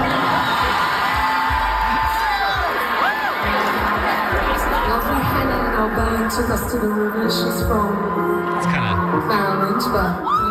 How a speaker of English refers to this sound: Listen to the crowd, though. Everyone's like, now everyone's starting to laugh.